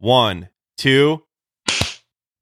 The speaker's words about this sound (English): Let's do the first three-way clap on the show. Three-way clap.